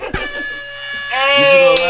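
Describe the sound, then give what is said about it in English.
A long, blaring air horn blast holds one steady buzzing pitch for nearly two seconds, swelling louder and brighter partway through after a brief thump at the start. “Hey, we out here with the air horn.”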